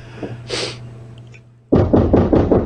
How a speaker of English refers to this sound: That's a cop knock.